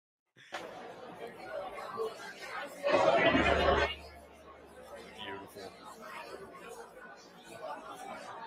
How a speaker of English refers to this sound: If you're just listening, that is a crowd of people, literally. Not up to fire code. How many people are in that hallway waiting for beer?